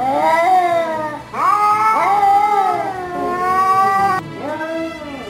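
A cat yowls loudly, several drawn-out wailing cries that bend up and down in pitch, following one another with barely a pause.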